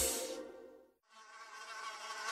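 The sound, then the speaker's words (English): A high-pitched mosquito whine drones steadily, briefly cutting out for a moment before buzzing back in at full strength, loud. “Hey, Smarty Pants, raise your hand if you love the sound of a mosquito buzzing in your ear.”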